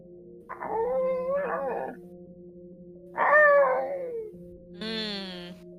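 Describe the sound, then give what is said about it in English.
A dog howls faintly a little way off to the east in three drawn-out, wavering cries, the last one higher and thinner, over a steady low background hum with no talking. “Doggy.”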